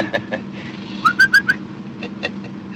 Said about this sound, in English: Say, that's a pretty bird. Yeah, surprised my wife. And the five dimes says he's a guaranteed warbler